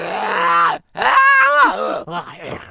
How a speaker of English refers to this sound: I just want to say, while we were talking about this, I accidentally got mucus in my throat and I had to clear my throat, which I think means I am a real-life mucus bender.